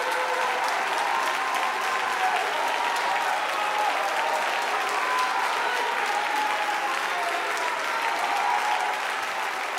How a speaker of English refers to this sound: And if you believe it, you ought to stand up and clap your hands and shout yes.